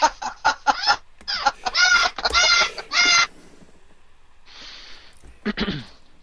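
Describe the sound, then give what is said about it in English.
A pet parrot squawks loudly, a quick run of short harsh calls swelling into longer raspy screeches, then a pause and a few quieter squawks, with no one talking. “Bird's like, you haven't cast any parrots!”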